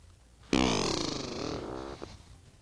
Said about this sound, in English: Oh, hold on. Hold on. It's time for the fart solo.